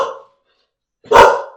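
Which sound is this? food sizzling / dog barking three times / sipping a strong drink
dog barking three times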